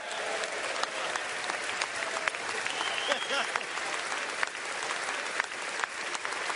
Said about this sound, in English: Members of both political parties welcomed him back to Congress with a rousing ovation and with good reason.